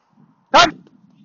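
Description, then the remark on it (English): A single sharp bark from a dog far away being called back by its owner rings out loud, lasting only a moment, with faint low background rumble before and after. “Hang on, I'm gonna have to call my dog because she's miles away.”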